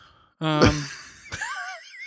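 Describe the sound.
A person lets out a long, loud, breathy yawn with a voiced groan that rises and trails off, followed by a brief sharp inhale and a faint, wavering high tone.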